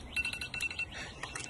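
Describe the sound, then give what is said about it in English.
An alarm sounds with a thin, high electronic tone in two short repeated bursts, fairly quiet, over a busy patter of soft clinks and rustling. “I can open wine before the alarm goes off, right?”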